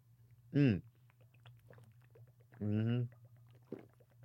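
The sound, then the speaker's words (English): A water bottle gurgles twice while someone drinks water from it: a short glugging burst with a falling pitch, then a longer, steadier gurgle a couple of seconds later, both over a low steady hum. “One thing about this bottle, though, it makes a lot of noise when I drink it.”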